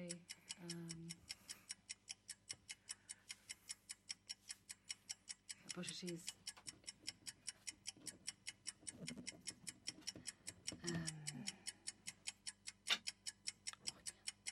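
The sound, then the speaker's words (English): A steady, fast ticking runs throughout like a countdown clock, with about 20 seconds left on a quiz clock while contestants try to answer. Evenly spaced clicks at moderate volume, with brief murmured voices occasionally breaking in underneath. “All right, ladies, you've got 20 seconds or so on the clock.”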